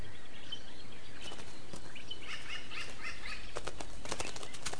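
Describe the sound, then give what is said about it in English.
Several crows flap their wings in bursts, quick papery whooshes and flutters clustered together as they gather and settle at a log to feed on grubs, with faint outdoor background noise and no talking. “This log is clearly a good source of grubs, and a whole group of crows have come here to feed.”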